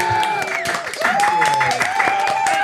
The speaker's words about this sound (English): Oh, did you do the round of applause? Good job. I did it. That's the hardest part of the whole podcast.